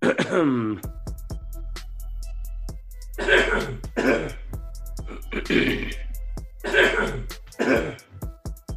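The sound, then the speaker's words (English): Repeated throat clearing in a quick montage of clips from recording sessions: a voiced grunt, then about six harsh, raspy clearings in close succession, loud, over a steady low hum. “we're going to play a montage right now of … clearing his throat”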